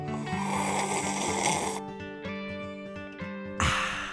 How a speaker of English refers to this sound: Hey, that's a welcome back sip. That is a welcome back to the studio sip.